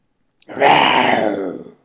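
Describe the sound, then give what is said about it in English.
A single rough, throaty growl, voiced to imitate a tiger, swells quickly and holds steady and loud for a little over a second with a raspy, rumbling texture before trailing off. “It's clearly an animal growling. I believe that was intended to represent a tiger.”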